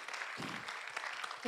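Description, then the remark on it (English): A burst of audience applause, a dense patter of many hands clapping at steady volume, with a voice breaking in over it right at the end. “Yeah, I just want you to applaud yourself for doing that because you just got out of your comfort zone.”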